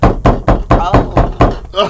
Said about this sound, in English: Oh. Oh, yeah. Nigga ain't hit 3 no more. That's a 5-6 knock. Yeah. I need you to come to the door.